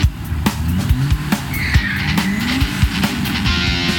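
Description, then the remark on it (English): Two self-driving cars, one a black sedan in pursuit, roar past in a frantic chase, tires screeching in high squealing sweeps over heavy, rumbling engine noise, punctuated by sharp thuds and bursts. Loud and continuous, with no talking. “We're in a chase scene with two auto-driving cars.”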